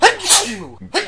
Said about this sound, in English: And then we cut to a scene that easily could have been in the same scene, but we split it for some reason, where I'm going to sneeze.